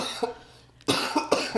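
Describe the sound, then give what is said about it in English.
A soft throat sound, then a pause before two or three sharp, loud coughs burst out in quick succession, with no talking. “Can you talk? Because I have to cough.”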